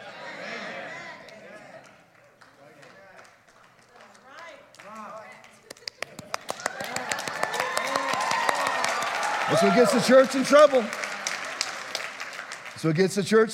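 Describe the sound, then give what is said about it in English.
After a man preaching a sermon speaks, an audience breaks into light, polite golf clapping: scattered claps that thicken into a steady, modest patter, with crowd murmur and a voice continuing underneath. “Golf clapping. Tacit agreement.”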